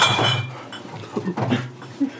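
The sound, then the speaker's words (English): Glass bottles clink and clatter in a few scattered bursts as a person who cannot see crashes into them, the knocks moderately loud, with a faint murmur of voices underneath. “You're crashing into bottles, you idiot.”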